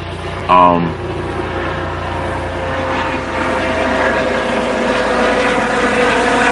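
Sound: helicopter flying overhead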